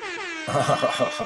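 A loud air horn sound effect, played as a super chat alarm: one sustained, brassy blast that slides downward in pitch, then a quick run of pulsing horn bursts in a steady rhythm.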